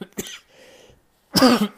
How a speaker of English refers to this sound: Excuse me. That cough coming back with a vengeance. It still is not gone.